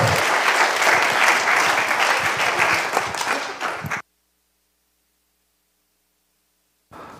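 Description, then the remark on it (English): An audience applauds loudly to thank the people who spent a long time making something happen. It is a dense wash of many hands clapping for about four seconds before it cuts off abruptly into silence, with a brief burst of noise returning at the very end. “Y'all give it up for them.”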